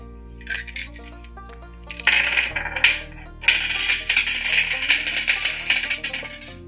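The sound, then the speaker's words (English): Dice are rolled for damage in a tabletop role-playing game, rattling and clattering across a hard surface in a busy burst of quick clicks that tumble on for several seconds before settling, with no one speaking. “Can you roll the dice on the table and not on”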